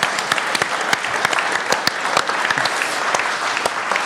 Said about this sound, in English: Roll a round of applause for that.